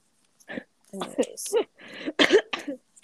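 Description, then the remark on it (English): A coughing fit from a person trying to laugh: several harsh, throaty coughs in quick, uneven succession, with strained laugh-like breaths mixed between them, over about two and a half seconds. “I went to start laughing and I started coughing.”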